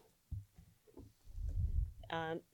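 A zipper on a bag full of balls of yarn is pulled open in one quick, buzzy zip, preceded by muffled rustling and thumping as the bag is handled.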